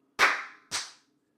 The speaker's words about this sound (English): Do you want to sync together? Right. Why don't you count me out? Count me out to three, and then on four, I'll clap with you.